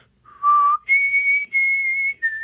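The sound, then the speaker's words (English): A clear, exhaled whistled melody line of several sustained notes, stepping from a lower tone up to a higher held pitch and then dipping slightly, with no talking. “though the vast majority of his whistling is exhaling whistling. So he'll do a whole line that's exhaled.”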